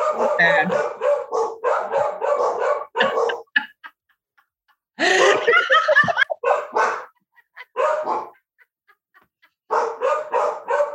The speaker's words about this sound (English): somebody was walking past the house. That's why the dogs were barking.